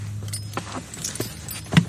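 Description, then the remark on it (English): Keys dangled in front of a microphone jingle and clink in several short, bright metallic bursts, with a louder rattle near the end over a low steady hum. “The long and the short of it is that, I'm dangling my keys in front of the microphone.”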